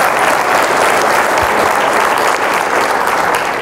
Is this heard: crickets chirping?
no